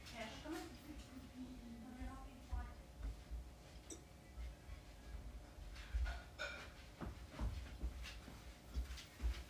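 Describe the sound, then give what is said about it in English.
A female dog barks and yelps in short, uneven bursts, with some whiny, drawn-out cries near the start and background noise and shuffling in between. “Let me grab my dog real quick. She's crazy.”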